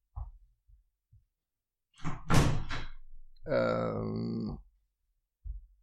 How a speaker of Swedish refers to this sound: Jag ska bara stänga den där dörren som står och slår på grund av vindpusten. Det borde du gjort för länge sedan.